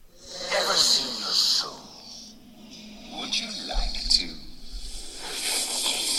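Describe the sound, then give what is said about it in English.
The game character Thresh noisily slurps soup as his taunt: a string of wet, hissing sucking bursts with squishy, sloshing undertones, fairly loud and irregular across several seconds. “Why does he slurp like that?”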